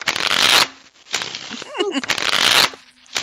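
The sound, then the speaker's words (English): Playing cards are riffle-shuffled for a hand of blackjack, twice, in two dense, crackling bursts of rapid flutter, with a short pause between them where a brief voiced sound is heard. “Shuffling cards.”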